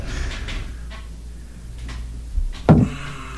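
A chair scrapes and thumps as a person pushes it back from a desk, with a short low rumble building to one sharp, loud knock near the end, with no one speaking.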